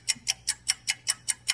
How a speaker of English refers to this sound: Guys. 15 more seconds on the timer to admit it if you took it. No punishment. Go.